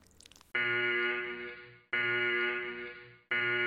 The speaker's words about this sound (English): What on earth is that siren?